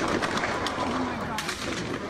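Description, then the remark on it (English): Rapid gunshots crackle in a quick, uneven burst in the streets through a dense, noisy background, sounding muffled, recorded on cell phone video, with voices murmuring underneath. “Rapid gunfire.”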